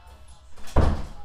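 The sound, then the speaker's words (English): A single heavy door slams shut with a sharp, deep thud that lingers briefly. Before it, only faint room noise and a soft shuffle can be heard. “Take two. Don't slam.”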